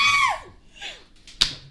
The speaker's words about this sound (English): The clap right there. It shows up on the thing. That was a clap, huh? Probably.